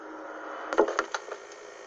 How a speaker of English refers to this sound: The door opens again. They say that apparitions roam this hall. Maybe one just opened that door.